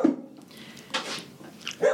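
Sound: dogs barking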